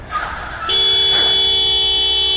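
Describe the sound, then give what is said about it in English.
A car horn blares loudly in Paris city traffic and holds steady after a brief moment of street noise, one long sustained honk that continues to the end without any talking. “God, this traffic.”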